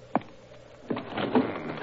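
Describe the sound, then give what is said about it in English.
A card room window is shut: a sharp knock, then a scraping, rumbling slide with a few bumps along the way, ending in a soft thud. No voices. “I think we may close it now.”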